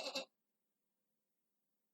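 A quick goat bleat made by a human voice, two wavering pulses lasting under half a second, then silence, coming from deep inside a bush after a goat is nudged.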